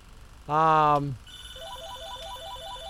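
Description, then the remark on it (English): A brief loud buzzing tone gives way to a phone's electronic ringtone, a short stepped melody repeating over and over at a steady moderate volume. “Of course, now I'm going to get phone calls.”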